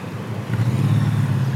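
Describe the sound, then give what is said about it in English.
Steady roar of street traffic at an intersection with a stoplight, with car engines rumbling low and building slightly as vehicles pass by, continuous and fairly loud throughout. “And I'm just holding on just in case you go into the Rolling street. Traffic, thank you.”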